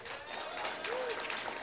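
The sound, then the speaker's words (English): Audience applause from a crowd voting by round of applause on which game is better, a steady wash of many hands clapping at once, fairly loud and sustained throughout, with a brief whistle rising over it. “By round of applause, do you think Kick It is the better game?”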